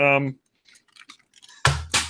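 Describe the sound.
A plastic G1 Galvatron toy robot, thrown down, lands with two loud, clattering knocks in quick succession, first on a table and then the floor, after a brief voice and a few faint clicks.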